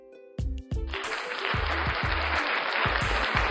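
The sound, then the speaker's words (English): A round of applause for Lewis Hamilton being knighted swells up after a brief moment and stays loud and dense, with heavy low thumps pulsing underneath in an uneven rhythm. “You get a round of applause.”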